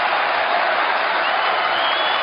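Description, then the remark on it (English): A large rally crowd cheering loudly for Ted Cruz during his speech, a dense, steady roar of many voices and clapping that holds constant for the whole two seconds with no break or single voice standing out. “But so the crowd right now is pretty riled. They love Ted.”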